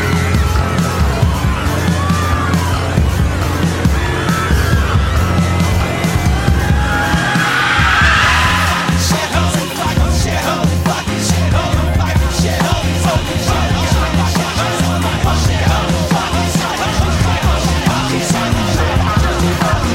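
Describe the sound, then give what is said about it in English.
A loud, chaotic street scene amid smoldering glass: cars honk and beep in distress over a constant rumble of traffic while people scream and yell in the background, the din never letting up. “Against this backdrop of screaming and beeping and honking and smoldering glass, words begin to make themselves known.”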